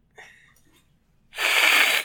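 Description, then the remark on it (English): A person imitates a cat's hiss: after a brief faint breathy sound, a loud, harsh, steady hiss of airy noise bursts out and holds for under a second before cutting off. “Do you want to hiss to end the podcast?”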